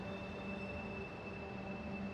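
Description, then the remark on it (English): A steady rumble of a train idling at Platform 5 of a railway station, with a constant high electrical whine and low mechanical drone, no voices. “Here we are, Platform 5.”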